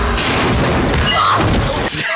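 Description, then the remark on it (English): A tank crashes into a neighborhood at the beginning of a film, giving a loud, sustained rumble of heavy booms and grinding crunches that fill the low end throughout, with scattered bright debris clatter on top before it tails off. “They got a tank coming in and crashing the hood.”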